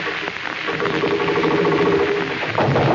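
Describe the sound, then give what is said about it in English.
A sound effect of a sewing machine: a steady, loud mechanical whirring and rattling that runs without pause for the whole stretch, slightly louder at the end, with no voices. “That's supposed to be a sewing machine, folks.”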